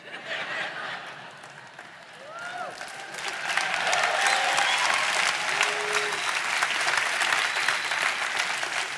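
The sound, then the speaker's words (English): An audience at a church service claps steadily, the dense applause swelling louder after a few seconds and holding strong, with scattered voices and a few whoops rising through it. “Don't clap too long, I can't hold my breath that long.”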